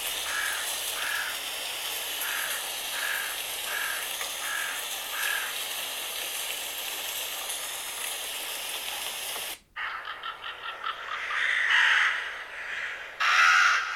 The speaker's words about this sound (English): Look up Raven Call to see if it's different. Okay, Raven Call.